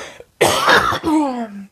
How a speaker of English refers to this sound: Sorry. My throat got dry and I just had a cough coming. I'm fine. No COVID.